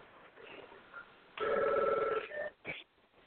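A phone rings with one sustained electronic trill lasting under a second, followed by a couple of brief tonal blips, moderately loud against a quiet, muffled background with no talking.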